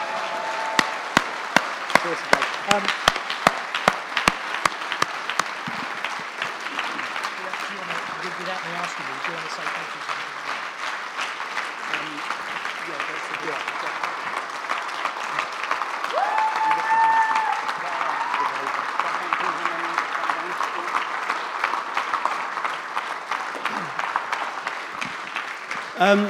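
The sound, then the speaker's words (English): An audience breaks into sustained applause to praise God, starting with a few sharp individual claps and swelling into dense, steady clapping that carries on for about twenty-five seconds, with a brief vocal cheer partway through. “Although you weren't walking around the corner, let's give God a round of applause for what he's done.”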